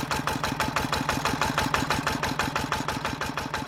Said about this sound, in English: And the generator at the farm has kicked in to produce electricity for the island. A backup on still days when the windmills on neighbouring Sandy stop turning.